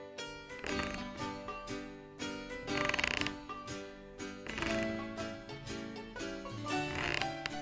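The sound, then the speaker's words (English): A rocking chair on a front porch creaks repeatedly in a steady back-and-forth rhythm, loud, its groaning wooden squeaks rising and falling with each rock, with no voices present. “Sitting in this here rocking chair on my front porch is one of the best things about being alive.”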